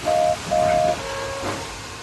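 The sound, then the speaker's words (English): A steam engine, Oliver with Toad, puffs away under a steady hiss. Its whistle gives two short, even toots, then a longer, softer note that fades out. “As Oliver and Toad puffed away”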